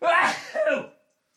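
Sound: sneeze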